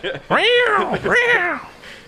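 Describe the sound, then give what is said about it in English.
A person vocally imitates cats fighting, letting out two long, rising-and-falling yowls in quick succession, loud, with a brief dip between them and no other talk. “I'm like cats fighting.”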